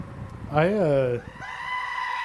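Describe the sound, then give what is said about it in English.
A goat lets out a loud, wavering scream that rises and falls, then a second, higher-pitched bleat follows right after, both prominent. “Goat scream? Goat scream.”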